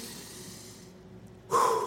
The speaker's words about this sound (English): If you can take a deep breath with me, ready?